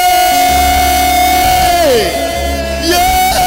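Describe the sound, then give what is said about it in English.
An audience erupts in loud, continuous clapping and shouting for God, a dense roar of cheering voices with a long sustained tone running through it that bends briefly downward twice. “Why don't you clap for that God?”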